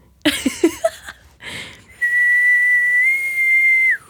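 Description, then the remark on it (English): A person tries to whistle a movie's ringtone melody: a few short, breathy, uneven notes and a puff of air, then one long, steady high whistled note held for about two seconds. “Should I do the whistle? And see if it matches up with the ringtone.”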